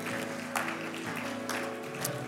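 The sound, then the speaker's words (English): An audience clapping together as a clap offering to God, in a dense, steady wash of applause, with sustained musical tones humming underneath and a few sharper bursts standing out. “Come on, will you give God a big, big, big clap offering?”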